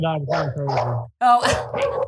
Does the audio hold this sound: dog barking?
yes